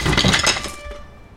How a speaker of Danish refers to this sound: Et vindue på tredje etage går i stykker, fordi min far smider en cello ud gennem det, i forsøget på at slå min mor ihjel.